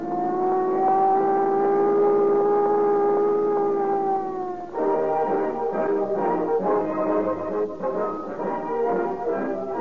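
The loud engine of a Buick touring car carrying escaping bank robbery suspects drones with a steady, humming pitch, then shifts into a rougher, sputtering rumble as it keeps running. No one speaks.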